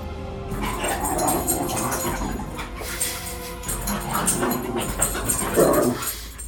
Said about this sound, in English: Man, they are not happy about him. Listen to those wolves really getting into it.